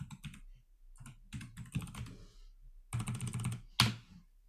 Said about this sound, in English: I hope everyone is enjoying my mechanical keyboard.